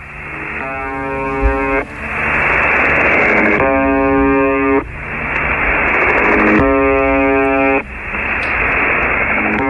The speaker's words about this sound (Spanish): Mire, además, estos radioaficionados le pusieron el nombre de El Zumbador por su sonido habitual, ese que les pusimos al inicio y que aquí está de nuevo para que lo identifiquen.